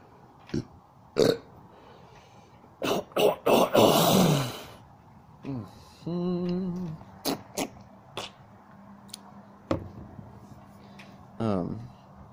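A coughing fit: several sharp, harsh coughs, then a longer rasping burst, followed by strained throaty groans and a few more scattered coughs.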